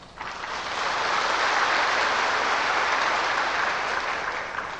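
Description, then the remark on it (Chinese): Sustained audience applause, a dense, steady roar of many hands clapping that swells quickly and holds at a fairly loud level for several seconds, with no voices over it. “那么多鼓掌的人，他们是了解呢还是相信呢？”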